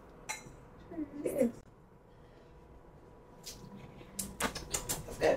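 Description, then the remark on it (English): Different drinking glasses clink together in a toast, a few sharp taps scattered across a few seconds, with faint voices and handling noise around them. “So we have different glasses.”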